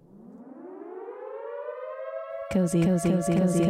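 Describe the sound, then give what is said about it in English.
A 'cozy alarm' sound effect: a siren-like alarm wails steadily upward in pitch for a couple of seconds, then abruptly gives way to a louder, choppy burst of pulsing, voice-like tones. “I am actually duty-bound to now play the cozy alarm for you. So here's the cozy alarm, you got to sound it.”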